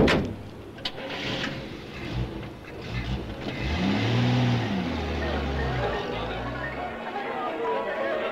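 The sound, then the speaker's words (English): A man gets into a car; its engine turns over and revs up, the pitch climbing and falling as it pulls away, with a low background murmur of voices throughout. “He gets into a car.”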